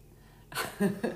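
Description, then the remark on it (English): A single sharp, hissy sneeze bursts out of near silence, followed by two short, lower voiced catches of breath. “uh-oh, you're going to start sneezing.”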